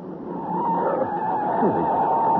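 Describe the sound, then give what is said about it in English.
A car skids as its brakes and handbrake fail, its tires giving a sustained, loud screech over a rough, rumbling roar, holding steady for a couple of seconds with no voices. “Good Lord, the handbrake won't hold either.”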